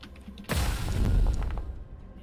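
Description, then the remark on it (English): A single loud gunshot sound effect for a ranged attack in a role-playing game cracks out suddenly, followed by a deep rumbling boom that lingers and fades over about a second and a half, as the bullet hits a character. “He staggers as the bullet hits him.”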